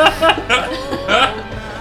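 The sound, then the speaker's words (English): A person imitates a goose with about four loud, nasal honks in an uneven rhythm, each a short, buzzy, strained vocal burst. “My goose honk.”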